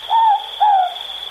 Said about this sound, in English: I think it's something so different that it should be there and not questioned, just accepted. It's part of New Zealand, part of our history. Not bad for something that began as a man doing an owl impression in a hallway. The Moorpork. Ruru.